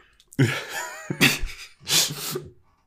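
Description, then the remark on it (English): A person imitates choking and gasping for breath, with a strained, croaking vocal sound followed by two harsh, raspy gasps for air, fairly loud, with no words spoken. “Like, what if you could like, I don't know, like do some kind of like, I don't know, like gasping for breath thing?”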